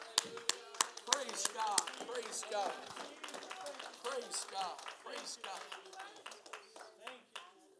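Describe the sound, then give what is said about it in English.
An audience claps hands to the Lord in a steady burst of applause, sharp individual claps standing out early before blending into a dense patter, with voices murmuring and calling out underneath. “Why don't we clap our hands one more time to the Lord?”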